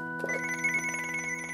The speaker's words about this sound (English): Oh, my phone.